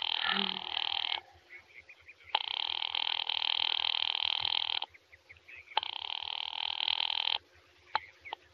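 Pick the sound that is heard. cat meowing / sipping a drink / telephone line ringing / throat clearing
telephone line ringing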